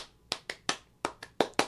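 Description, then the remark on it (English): Hands clap out a simple rhythmic beat, seven sharp claps in two short groups with a brief pause between, no voices present. “You could do it with your mouth or clapping, like...”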